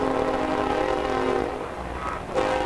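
A train sounds its horn in a long, steady blare with a rumbling undertone, fairly loud, as it passes a ballpark during an afternoon baseball game, with no talking over it.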